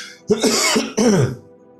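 Two rough, throaty coughs from a lingering COVID cough in quick succession, fairly loud, with a gravelly throat-clearing quality and a brief gap between them, then quiet.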